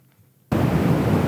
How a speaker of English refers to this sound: Oh, that sounds a lot like an ocean too. That sounds a lot. Deep blue. Deep blue noise. Deep blue noise. Deep blue, you're lower okay, down. Okay, dude, I'll start at that one. It is literally called deep blue noise.